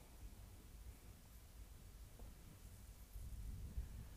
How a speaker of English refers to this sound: That thunder sounds lovely. You can't pay for ambiance like that.